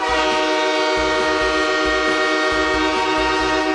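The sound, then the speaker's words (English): A loud, sustained train horn blares steadily from start to end, with the low rumble and clatter of rolling railcars running beneath it. No voices are heard. “No boards, all trains. All aboard!”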